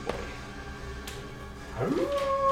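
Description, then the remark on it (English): A hellhound's howl swells up near the end, sliding upward in pitch into a long, steady wail over a low background rumble, with a couple of soft thuds before it. “They howl again.”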